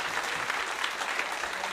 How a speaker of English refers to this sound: Every actor who gets on the stage deserves a huge round of applause.